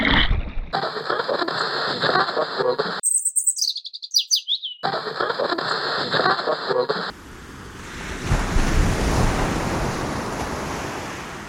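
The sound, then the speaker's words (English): Muffled, churning water heard while swimming under ocean waves, with a few high bird chirps, then steady ocean waves washing in loudly as a broad, continuous rush of surf over the final seconds. No one speaks. “Swimming Under Waves”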